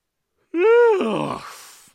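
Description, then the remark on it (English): A single loud yawn made directly into a microphone: a rising, voiced groan that stretches out and then trails off into a breathy exhale, with no talking. “I don't know if I ever yawned directly into the mic before.”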